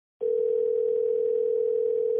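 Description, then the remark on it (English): A steady telephone dial tone before a prank call to Jim Baker's pancake company hums at one unbroken mid pitch, starting abruptly and holding evenly loud for about two seconds with no voices. “So hold tight for this prank call.”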